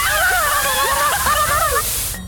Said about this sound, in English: You want your nooks and crannies? Fine, I'll hose out your nooks and crannies! Ow! Turn it down! I'm sensitive back there.